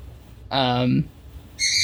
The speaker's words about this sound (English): My bird is going crazy in the background that you can probably hear.